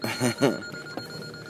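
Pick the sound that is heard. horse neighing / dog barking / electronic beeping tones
electronic beeping tones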